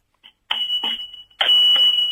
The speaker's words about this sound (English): I'm ringing my bell, my bike. Cause I've got it.